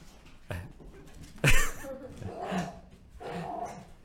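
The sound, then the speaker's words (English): A dog barks at a UPS delivery driver, a few spaced barks over several seconds, one sharp and loud, the others rougher and more growly, with no one talking. “It's hard to keep a straight face in the midst of a dog running under your feet trying to get the UPS guy.”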